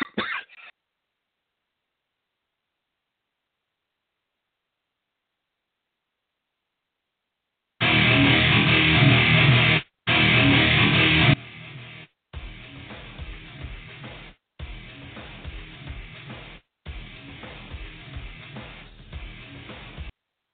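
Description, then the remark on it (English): A harsh, prolonged coughing fit: after a brief opening burst and a pause, loud ragged coughs and throat clearing come in heavy clusters separated by short gaps of silence. “Sorry, I went on a coughing jack.”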